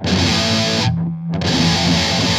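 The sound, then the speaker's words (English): Heavily distorted electric guitar, played through a Metal Zone distortion pedal without any delay, chugs loud and dry with no echo, cutting off briefly in the middle before the crunchy tone resumes. “Here, take a listen to my guitar without any delay. This is with the metal zone that we set up in the last segment.”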